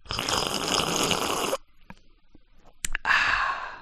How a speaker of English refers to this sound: hang on, I'm gonna have a drink, a sip of something, so you might hear it.